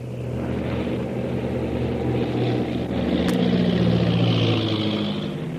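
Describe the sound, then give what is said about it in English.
A propeller plane's engine drones steadily in flight as the plane banks to come in from the other side, a low throbbing roar with a rising pitch shift partway through as it turns, with no voices over it. “I'll bank the plane and come in from the other side.”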